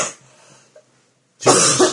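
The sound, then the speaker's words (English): A faint rasp fades out, then after a short silence a single loud, harsh cough bursts out and lasts about half a second. “What you want is like a cough remover, don't you?”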